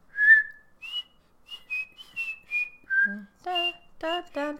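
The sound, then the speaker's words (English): A whistled TV theme song: a string of short, clear notes stepping up and down in a melody, with a few brighter, buzzier notes near the end. No one speaks. “Whistle a theme song and see if I can get it.”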